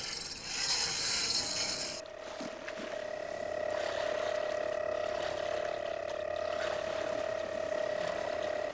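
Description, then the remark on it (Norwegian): A boat engine starts: a bright, rasping mechanical cranking for about two seconds, then a steady humming drone with a sustained tone that runs to the end. No one speaks. “Ok, fyr opp motoren,”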